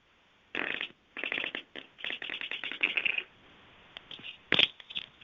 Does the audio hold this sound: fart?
yes